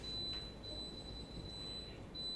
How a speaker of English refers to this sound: are you able to see that in the midst of all of that, even in the midst of an alarm that won't stop beeping, he still gives you good gifts.